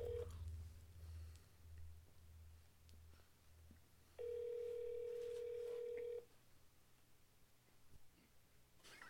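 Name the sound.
outgoing phone call ringing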